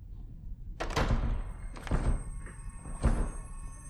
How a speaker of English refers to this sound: Trina, you broke the door.